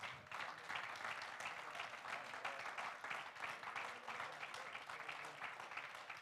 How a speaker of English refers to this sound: Hey, let's stand together and give the Lord a great hand clap together.